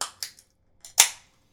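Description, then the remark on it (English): A can of dark ale brewed with mulling spices being cracked open: a few quick metallic clicks, then a louder pop followed by a brief, bright fizzing hiss that quickly fades out. No one speaks. “Let's say that we crack it and try it.”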